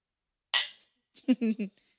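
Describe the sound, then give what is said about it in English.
Glasses holding a drink made with lemon instead of lime clink once in a toast, a single bright, ringing strike that fades over a fraction of a second, followed after a brief pause by a short bit of voice. “So I'm excited. Cheers.”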